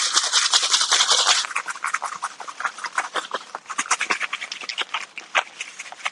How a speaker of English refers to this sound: We're going to take our chicken, two or three pieces of it at a time, put them in the wash. And from the wash, we're going into the bag. We do another piece. Wash. Into the bag. Shake it up.